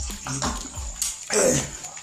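Water runs or pours in uneven gushes, swelling loudest toward the end, with a faint low murmur in the opening moments.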